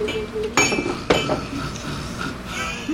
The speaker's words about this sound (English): You all chink glasses. You cheer the toast.